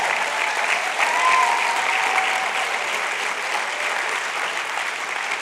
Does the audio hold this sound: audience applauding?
yes